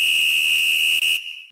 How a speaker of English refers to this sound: We're ready for the two-minute drill, right? Okay, yeah, that's right. Okay, so I hit the whistle, and then I'll start.